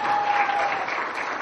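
Sustained audience applause for a guest, a dense, steady wash of many hands clapping at an even, fairly loud level throughout, with no voices standing out.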